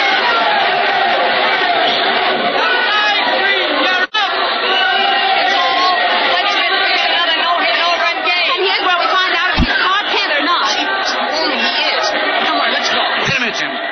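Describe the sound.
A dense crowd murmurs and chatters steadily at a ballgame, a loud continuous babble of many overlapping voices with occasional shouts rising out of the din.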